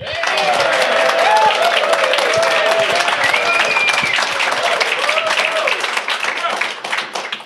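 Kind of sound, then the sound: crowd, audience round of applause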